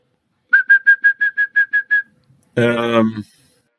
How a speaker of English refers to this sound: And now, the European song thrush, who usually sings in pairs from the tops of the trees.